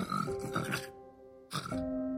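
Loud snoring from a woman who fell face first onto her bed without changing: a long rasping snore followed by a second shorter one after a pause, with a steady humming tone underneath.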